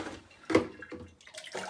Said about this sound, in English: Over the sink, you're going to fill your cans so you don't get water on your floor. And you're going to pour them into your pot. So I'm at number three. I've poured three cans. One more.